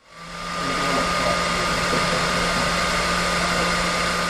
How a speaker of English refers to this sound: That, of course, is a hairdryer. Maybe you think of a salon or someone getting spiffed up after a swim at the pool. How about a skinned barred owl getting its feathers washed and fluffed?